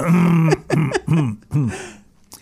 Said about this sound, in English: Excuse me, that you got my throat clearing for free there. This is me clearing my throat. Talk about personal.